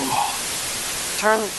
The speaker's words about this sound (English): Turn off the static, Kyle.